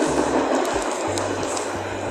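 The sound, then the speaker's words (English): A tram rolls past on its rails, a steady, loud rumbling roar with a low mechanical hum and faint metallic squeals, continuous throughout with no voices. “Ignore the trams and stuff.”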